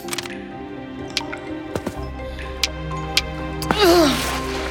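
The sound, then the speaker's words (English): A walking cane taps on a hard cave floor, about six sharp, irregularly spaced knocks over a steady low drone, with a brief vocal groan near the end. “Maybe if I use my cane?”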